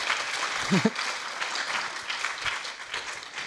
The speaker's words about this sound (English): All right, everybody, let's please give a round of applause for Ursula Beeman for her films.